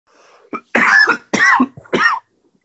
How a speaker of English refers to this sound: Anyway, I mean, I'd be coughing at it, too, because it's exactly what it was.